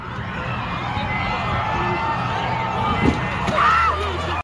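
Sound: crowd screaming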